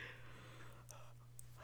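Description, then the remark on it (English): A person yawns, a soft, drawn-out breathy exhale over a steady low electrical hum, ending in a brief louder puff of breath. “You're yawning too.”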